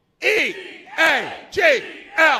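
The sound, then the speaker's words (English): A crowd at Borgata shouts an Eagles team cheer in unison, spelling out E-A-G-L-E-S in loud, drawn-out syllables in a steady rhythm, each shout rising and falling in pitch. “Go Eagles, and we're going to do an Eagles cheer”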